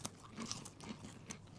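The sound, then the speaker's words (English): Crunchy salt and vinegar pea snacks being chewed: a run of crisp, irregular crackling bites with brief louder crunches scattered among softer grinding, no talking over it. “So it might be basically salt and vinegar peas.”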